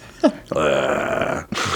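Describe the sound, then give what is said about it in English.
A short vocal yelp gives way to a close, loud, gravelly growl from a human voice, held for about a second before cutting off, followed by a brief rough breathy sound. “That was a cool growl.”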